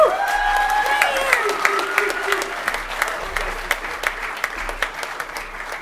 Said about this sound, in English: you might want to just give him some encouraging applause.